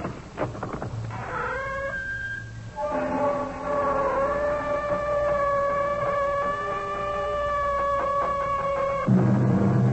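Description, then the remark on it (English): The door of the CBS Radio Mystery Theater creaks slowly open with a long, drawn-out squeal, its wavering, whiny pitch groaning on for several seconds after a brief first creak, over a low rumble. No one speaks. “The sound of our door is not unlike what greeted the ear of the famous archaeologist Howard Carter when he opened the door of Pharaoh Tutankhamun's tomb.”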